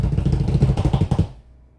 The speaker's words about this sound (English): From December 23 to January 8, technically, is we can drumroll and then you can say it in your car. Okay. Drumroll, please.